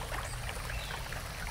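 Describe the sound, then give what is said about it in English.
A drink pours into a cup in a steady, unbroken stream with a soft splashing gurgle, fairly loud, running without pause and with no voices over it. “One of his maidens poured an unnamed drink into the nkomok or cup of the king and his guests.”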